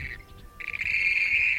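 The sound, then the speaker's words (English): Loud, shrill trilling calls of grebes ring out over the still water of an alkaline lake as the birds approach one another to mate, a brief burst followed by a sustained, rattling cry that fills the second half, with no voices. “On the still waters of an alkaline lake, they call loudly and approach one another.”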